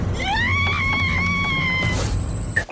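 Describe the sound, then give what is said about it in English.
The cartoon character Lindsay lets out a loud, high-pitched scream that rises and holds steady for nearly two seconds over a busy low background rumble, ending with a short clatter. “And the Lindsay screams at every turn throughout this episode just bring me so much joy.”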